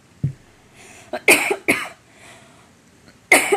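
A loud fit of coughing: a couple of quick harsh coughs in succession, then a pause and one more sharp cough, with softer throaty sounds before. No talking.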